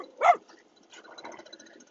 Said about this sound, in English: Got some guys doing some gardening out here, and Bud's barking at the leaf blower dudes.